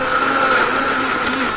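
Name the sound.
blender running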